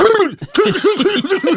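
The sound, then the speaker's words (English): A voice imitates a harsh, hacking cough: a strained voiced burst, a brief pause, then a rapid run of rough, guttural, loud coughing pulses. “And you'd be like, oh, shit, I have to cough.”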